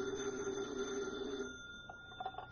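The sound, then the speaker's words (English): A single sustained ring of an old-fashioned telephone bell on Special Agent Jim Taylor's desk at an FBI field office, fairly loud, holding for over a second before fading into faint background noise. “Special Agent Jim Taylor is at his desk when his phone rings.”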